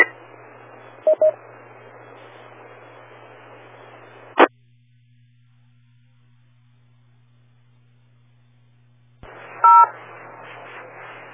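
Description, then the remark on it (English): Short bursts of telephone-style DTMF keypad tones from a radio with WIRES mode turned on, over a noisy radio channel with a steady low hum: a quick pair near the start, one sharp beep mid-clip, then another tone pair as static returns. “It sounds like you might have the wires mode turned on your radio.”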